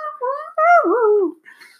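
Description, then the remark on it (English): A dog lets out a few high, wavering whines and yelps that slide up and down in pitch, fairly loud, ending in a fainter whimper. “Yeah, I want my dog screaming.”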